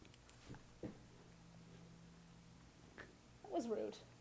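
A cat purrs in a low, steady rumble as it pounces on and attacks a person, with a few soft thumps of movement and a brief louder vocal burst near the end; the whole clip is quiet.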